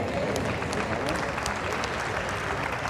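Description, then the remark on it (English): A crowd claps steadily for a few seconds, a dense, even patter of many hands filling the room, with no voices standing out above it. “I know some of you clapping, the rest of you like, this is heresy.”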